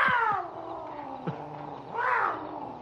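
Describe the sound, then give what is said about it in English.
A wild cat lets out a drawn-out yowl with wavering, harmonic cries that rise and fall, then swell again into a louder wail near the end, clear with no talking. “I suppose I shouldn't wish a man to lose some sleep, but I'd sure like to hear that cat sound off.”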